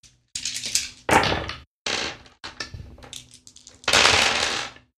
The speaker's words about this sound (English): Go ahead and roll 8 dice.